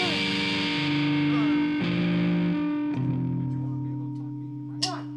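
Thick, heavily distorted tones hold loud sustained notes that shift pitch every second or so, with a gritty, buzzing edge and a sharp bright flare just before the end.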